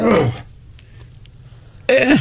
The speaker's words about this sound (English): I like how you turn your mic off every time to cough and we can still hear it.